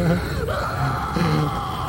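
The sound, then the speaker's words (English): Loud, strained screaming holds for about two seconds, a harsh wavering voice that dips briefly midway before surging again, with no pause for breath. “I got some screams for it.”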